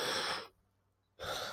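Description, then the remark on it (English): A deep, airy breath drawn in, a brief pause of near silence, then a long breath pushed back out, clear with no talking. “Deep breaths.”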